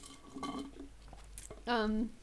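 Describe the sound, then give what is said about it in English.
Ice clinks in a cup of leftover coffee and melted ice water with a brief, light, high rattle in the middle, surrounded by murmured voice-like sounds and a louder voiced hum near the end. “I still have coffee left, / melted ice water.”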